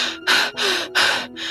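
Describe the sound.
A voice imitates the heavy, labored breathing of an older woman in her 60s, bent over and holding on to the edge of a table: four loud, raspy breaths, alternating in and out in a steady, strained rhythm with brief gaps between them.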